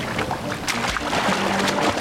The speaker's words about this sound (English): Is this splashy enough for you? Splash, splash, splash!